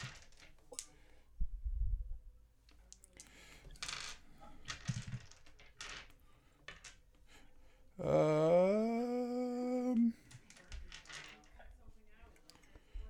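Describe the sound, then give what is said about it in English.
Small hard dice clatter and click irregularly as someone rummages through a bag holding a pound of dice, followed by a person humming a sustained note for a couple of seconds. “So I'm going to need many of my pound of dice here.”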